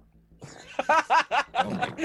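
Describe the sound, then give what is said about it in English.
A voice imitates the haptic vibration of a phone set to silent with a quick series of five or six buzzing, purr-like vocal pulses, moderately loud, delivered in a steady stuttering rhythm. “It's the haptic feedback. It sounds exactly like purring.”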